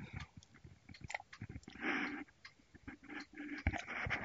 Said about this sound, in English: Pardon me while I get a sip of coffee, if you would, please.